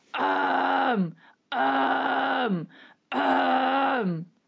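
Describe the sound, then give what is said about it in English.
Three sustained, rough growling vocal tones made with the false vocal folds, each held about a second and ending in a downward slide, separated by short breaths. Loud and gritty, with no talking. “And then really with the false fold, once you've got it on the cough, you just sustain it with a sound.”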